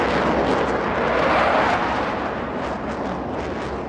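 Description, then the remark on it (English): A broad, rushing jet roar passes overhead, swelling to its loudest partway through and then easing off slightly while staying steady and dense. No voices accompany it. “Like in the distance, you hear this jet flies overhead.”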